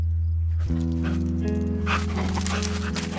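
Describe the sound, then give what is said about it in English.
A rescue dog named Luna gives a few short yips and whimpers over a steady, droning musical backdrop, the calls moderately loud. “found a rescue dog that they call Luna, who they adore and who runs very fast.”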